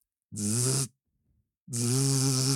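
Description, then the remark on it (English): A voice imitates snoring with two loud, raspy, buzzing breaths, a short one then a longer one, separated by a brief quiet pause. “And then I hear this noise.”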